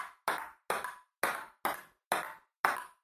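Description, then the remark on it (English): A table tennis ball pings back and forth in a steady rally, seven sharp, bright clicks spaced evenly, each fading quickly, with no voices. “Table tennis.”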